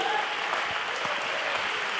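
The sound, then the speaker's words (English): A crowd claps steadily, a dense wash of many hands at a constant, fairly loud level with no clear individual beats or pauses. “If you can clap, then clap.”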